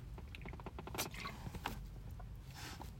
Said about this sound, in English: I'll just stop here for a couple of minutes in the gym while I finish my drink here. Just excuse me for a sec, I'll have a slurp.